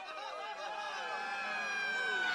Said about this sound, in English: And here comes the ambulance!